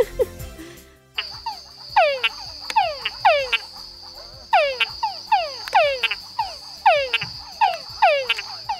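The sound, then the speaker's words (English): A male túngara frog calls repeatedly in quick, rhythmic bursts of descending, twangy notes, fairly loud, over a steady high insect-like whine with no talking. “You are correct that it is a frog.”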